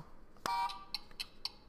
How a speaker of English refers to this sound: Let's check this out with the Blockbuster. Because, you know, they have this buzzer. This buzzer, right? Can I play it